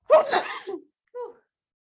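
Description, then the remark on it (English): A single loud sneeze bursts out with a sharp breathy blast, followed a beat later by a brief soft vocal sound. “I just sneezed.”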